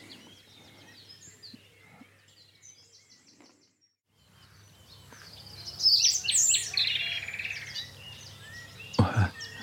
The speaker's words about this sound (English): I pause to just to say a few words, and a nightingale just trilled beside me. It's a little, and there's another one answering it.